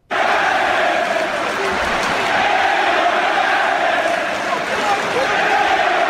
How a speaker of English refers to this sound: Check out what they were screaming at Floyd and chanting at him last week at Barclays.